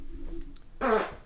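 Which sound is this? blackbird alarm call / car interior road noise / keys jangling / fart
fart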